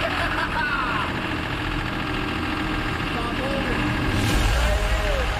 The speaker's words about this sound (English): Start this thing up. Yeah. Yeah. He's starting his tractor.